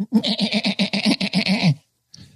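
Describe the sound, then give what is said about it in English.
A goat bleating sound effect played from YouTube: one long, loud, quavering bleat with a rapid wobble for nearly two seconds, then a brief faint bleat follows after a short pause. “This is called a bleeding goat sound effect.”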